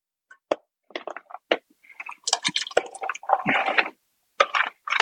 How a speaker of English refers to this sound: All right, so we're going to add in our chicken and our veggies now.